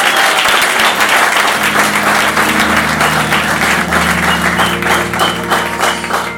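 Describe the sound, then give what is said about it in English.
A crowd applauds loudly and steadily, dense clapping filling the whole stretch without pause, with a faint musical tone sustained underneath. “I think he deserves a round of applause.”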